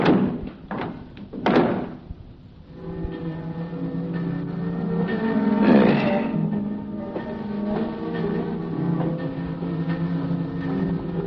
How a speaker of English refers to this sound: And unhurriedly, he pushed the sliding slab into the compartment and closed the door marked 12. And turned the knob that held it shut.